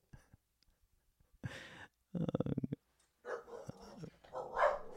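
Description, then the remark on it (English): A dog barks several times in short, loud bursts, one of them a rapid rattling growl-like volley, with brief pauses between and no talking. “Oh, that means the podcast is over. It's gone to the dogs.”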